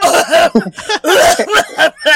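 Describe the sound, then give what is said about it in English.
A rapid string of loud, raspy coughs, around six harsh bursts in close succession, prominent with nothing else in the background. “And selling like four of them in your face while you're getting fucking coughed on.”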